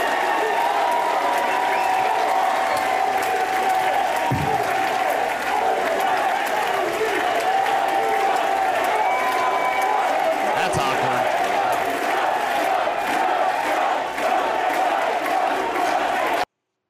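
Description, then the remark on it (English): A large crowd cheers and applauds loudly and continuously at a private Club 47 event as Kari Lake speaks about Donald Trump, with clapping, whoops and shouting blending into a dense, roaring wall of sound that sustains for the whole stretch before cutting off abruptly. “So maybe the crowd was a little biased.”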